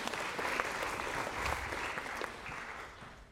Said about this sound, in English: But thank you. A round of applause for our two feistier players.